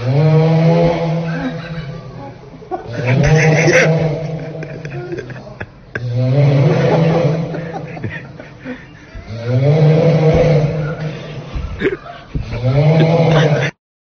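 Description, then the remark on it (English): Loud, rasping snores of an announcer who fell asleep on the mic, broadcast over a city-wide public address loudspeaker, four long drawn-out breaths in a slow rhythm, each a rough, growling drone with a harsh, band-limited tinny quality. “The announcer apparently fell asleep and started snoring on the mic, which reminded me of someone you may know.”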